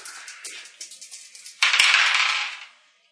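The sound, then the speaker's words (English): Three dice rattle with quick, light clicks for a second or so, then tumble across a table in a louder clattering roll that settles and fades out, a three-dice stress test roll in a game. No one speaks. “We'll call that a 3-dice stress test.”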